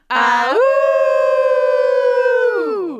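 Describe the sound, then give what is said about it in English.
A group of people howl together like wolves, one long, loud howl that swoops up, holds steady for a couple of seconds, then falls away at the end. “Okay, so what's gonna happen is I'm gonna say till next time, and then we'll all howl together.”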